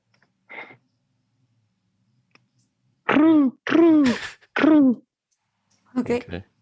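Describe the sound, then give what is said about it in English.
A person imitates a bird with loud, throaty squawks: one faint short call, then three strong falling squawks in quick succession, and a last shorter cry after a pause. “that was actually the best bird acting we've ever seen.”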